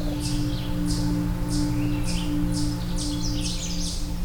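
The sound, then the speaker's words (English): A Canada warbler sings a series of quick, jumbled high-pitched phrases, about seven bursts in steady rhythm, over a constant low mechanical hum, captured on an audio recorder while out birding. “I think I've got a Canada warbler.”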